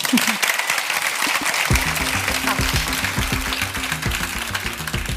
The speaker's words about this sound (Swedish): Och, ja, men jag är ju supertacksam för att du kom hit ikväll. En stor applåd för Sofia Benz.